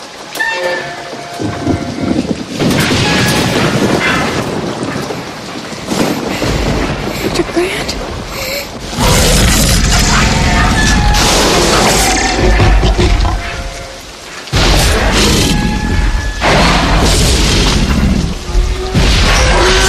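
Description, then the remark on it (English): Loud, dense movie-scene din of a T-Rex's giant thudding footsteps stepping over a fence, crunching on trucks and deep roars over steady rain, with heavy booming rumbles that swell and drop for the whole stretch. “stepping over the fence, crunching on the trucks, roaring, the rain”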